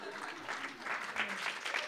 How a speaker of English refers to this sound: Yes, everybody, a round of applause for